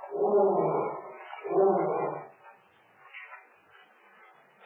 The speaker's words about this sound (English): Lion? Yes. Lion here?